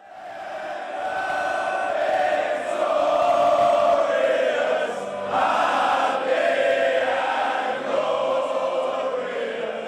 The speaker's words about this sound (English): So that crowd sound was the sound I have in a local pub on the evening I arrived, Monday, June 18th, during the World Cup, and England was playing Tunisia, and you can hear by the sound of the crowd that England won that match 2-1.